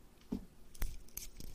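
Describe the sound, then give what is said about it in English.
A few quick, papery rips of sheets being torn off a toilet paper roll kept on a fridge, coming in short, fairly quiet bursts, with no talking. “And why isn't anybody asking about the roll of toilet paper on my freaking fridge back here?”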